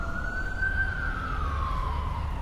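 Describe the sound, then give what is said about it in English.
An emergency vehicle siren wails steadily on a city street near U and 14th, over a dense, rumbling street background, its tone sliding slowly downward as the vehicle passes. No one speaks. “Sorry if you can hear the sirens.”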